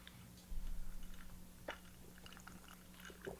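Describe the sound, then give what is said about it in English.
Quiet mouth sounds of people taking their first sips of a wine-and-cola drink: soft slurps and wet lip clicks over a low steady hum, with one sharper click partway through and no talking. “I'll tell you a little something about Spain after we do our first sips.”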